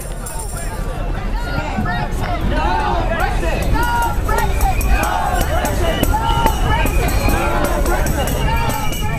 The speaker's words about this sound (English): Waving placards and flags, the 800-strong crowd set off from the University of Suffolk in good spirits, with their banners brightly contrasting the grey skies above.